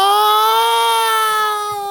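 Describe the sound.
A voice imitates a creature's lonely cry, said to start like a house cat, turn into something like goat chatter and end like an owl: one long, steady, high wailing note held for about two seconds, fairly loud, fading slightly at the end with no talking over it.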